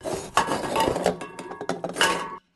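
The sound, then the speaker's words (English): VB beer cans on the dashboard of a blue Sandman panel van rattle and clatter together as it speeds along, in a busy, continuous jangle of light metallic knocks, swelling in a few sharper bursts before cutting off abruptly after about two and a half seconds. “The VB cans on the dash of Vander's blue Sandman panel van rattled as they sped on towards their destination.”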